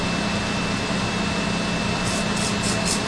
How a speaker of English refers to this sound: All right, so here we go. 3, 2, 1, spray solution. Gonna have a mist spray here.